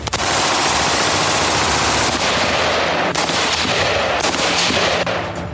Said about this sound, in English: While we wait for Verochka to power up, we hear gunshots. Lots and lots of gunshots.